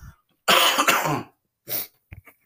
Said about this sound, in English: Sorry, I'm going to cough.